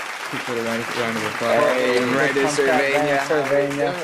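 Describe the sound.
A steady round of applause runs for about four seconds, the clapping a dense crackle under loud voices that whoop and call out over it the whole time.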